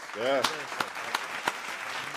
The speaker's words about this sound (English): So, but before we move on to the next segment, I do want to give Dominik a round of applause.